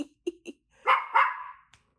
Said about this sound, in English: Again, I hope y'all can hear the joy. That's Ethel barking joyfully at my sister every time she moves.